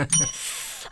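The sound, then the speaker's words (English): A short, bright bell ring with a high metallic tone, an improvisation comedy prop rung to end a scene, followed by a hissy wash as it fades, over about a second; a faint voice-like murmur sits underneath at the start. “When the bell rings, and the audience, they also looking forward to it.”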